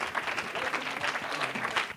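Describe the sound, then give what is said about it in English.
An audience at an evening church service claps steadily, many hands blending into a dense, even wash of applause that holds at a moderate level throughout, with no voices standing out. “Would you hand clap tonight?”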